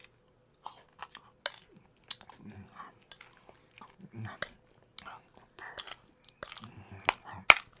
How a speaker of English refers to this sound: When Nissa is sad, he likes to eat. He walked back to the butterless porridge and gulped it down by the spoonful.